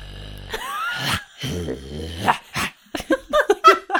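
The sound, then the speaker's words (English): A person imitates a dog's growl: a few low, raspy rumbling growls, followed by a run of short, choppy vocal bursts. “That's a growl.”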